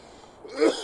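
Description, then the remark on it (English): A single sharp cough bursts out after a brief quiet moment, short and breathy with a rough edge. “It's a cough cast up in here.”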